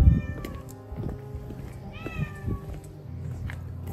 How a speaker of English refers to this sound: There's a cat.